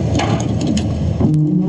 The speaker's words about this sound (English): A U.S. Army Corps of Engineers dredging boat unloads debris onto Lake Sonoma's boat ramp. Trees and logs dislodged from the January storms.